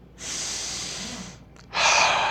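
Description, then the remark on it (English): Deliberate, controlled breathing as in a Taoist breathing technique: a long, steady airy inhale followed after a brief pause by a louder, forceful exhale, with no talking. “A goal for Taoists is to achieve immortality through breathing techniques.”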